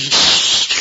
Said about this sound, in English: Gesundheit,